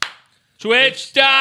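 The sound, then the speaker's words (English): A single sharp hand clap, made by a man who said he was peeing, rings out and quickly fades, followed after a short pause by two loud, drawn-out vocal sounds from a person. “He fucking clapped, and I don't know how, because he said he was peeing.”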